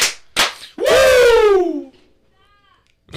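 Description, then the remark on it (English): Two sharp hand claps in quick succession, followed right away by a loud, drawn-out Ric Flair-style vocal whoop that slides downward in pitch before fading out. “Two claps in Ric Flair!”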